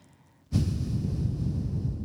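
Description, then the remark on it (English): A voice imitates a slow, satisfied exhale through the nose, the kind made across a backgammon table after a good roll of the dice: after a moment of quiet, a breathy, airy rush starts abruptly and holds steady for over a second and a half. “What it was a snide, fucking righteous, slow exhaling out of her nose of breath that would kind of resonate across the backgammon table to me.”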